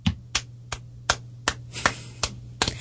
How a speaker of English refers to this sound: I'm clapping to mask the sounds of other people dry heaving, because it's an uncomfortable subject.